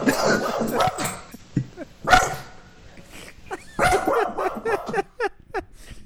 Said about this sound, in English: you might grow to regret that statement that it's okay to have my barking dog on the podcast.